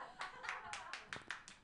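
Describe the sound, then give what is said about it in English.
An audience claps in a quick burst of overlapping, crisp hand claps that keep a fairly steady loudness throughout, with no voices on top. “Don't applaud for that.”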